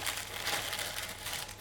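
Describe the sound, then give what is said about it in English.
Steady crinkling and rustling of paper, continuous for a couple of seconds as a homemade brown paper package tied with brown string, holding butter with dulse seaweed, is handled and opened, with no voices. “Here's one I made earlier in a perfect little brown paper pack. So this tied up with brown string.”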